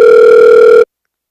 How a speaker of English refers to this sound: Whose phone was that? I think they hung up. I wasn't able to answer. Maybe they'll call back.